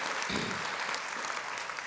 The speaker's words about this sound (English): Let's give God a hand clap of praise for your pastor and his lovely wife,